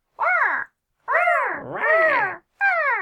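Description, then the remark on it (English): A voice imitates West Coast seagull calls: three loud, harsh squawking cries, the middle one long and wavering up and down, with short silences between them. “Thank you for the seagull noises.”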